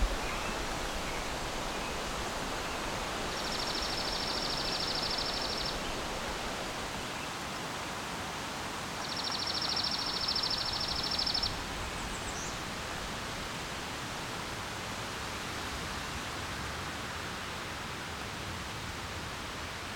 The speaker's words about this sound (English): So we've got here a fine example of a chipping sparrow, where one might expect to get a pine warbler. This is where it gets really dicey, telling the difference between the two. So one thing I notice is it's not fading in and out.